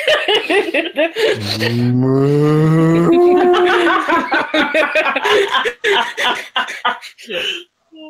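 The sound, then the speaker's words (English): A person gives a long, drawn-out imitation of a cow's moo, low and sustained for a couple of seconds, surrounded by talking and bursts of laughter. “And the cow is turned sideways with its head over the closest stall going, moo.”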